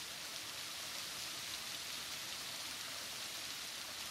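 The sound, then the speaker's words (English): A binaural recording of light rain falling steadily in a soft, even hiss with no breaks or voices, a gentle continuous patter that stays at the same quiet level throughout. “The binaural soundscape is light rain.”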